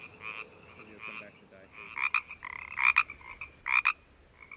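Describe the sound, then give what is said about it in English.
Pacific chorus frogs call in a lively chorus of raspy, two-part croaks, several rising loud while others answer faintly, with no voices present; recorded by Carlos Davidson for a CD. “Carlos Davidson recorded these Pacific chorus frogs for the CD ….”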